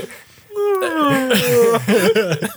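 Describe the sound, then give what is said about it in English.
A long, loud, voiced yawn stretches out with a steadily falling pitch, then breaks into a wavering, uneven exhale before trailing off. “Why are you yawning so much?”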